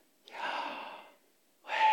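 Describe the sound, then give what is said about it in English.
Two breathy, aspirated exhales voicing the Hebrew divine name YHWH (Yahweh) as pure breath: a long airy outbreath, a short pause, then a second one starting. Soft, with no other sounds. “And so when one would try to pronounce it, if you did try and pronounce it, it's just aspirations.”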